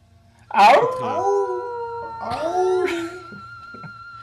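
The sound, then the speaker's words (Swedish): Three people howl together like wolves in a loud chorus of overlapping pitches, one long sliding howl and then a second, rising again before trailing off. “Avslutar med ett fett jävla ylande. Alla tre i kör.”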